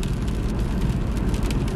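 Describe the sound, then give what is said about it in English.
A steady, loud rumble of a car on the move, with a constant wash of rain hiss layered over the low road noise, unbroken and without any voices. “I'm driving and it's raining.”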